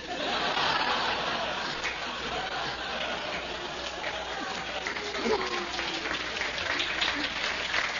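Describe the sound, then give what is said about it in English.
An audience applauds in a steady, dense wash of clapping that holds its level throughout, with murmuring voices and a few chuckles mixed into the crowd noise. “They're applauding to Hootspot, his kid.”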